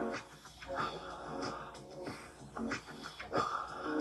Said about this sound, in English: In through the nose, out through the mouth. In through the nose, out through the mouth. Keep going.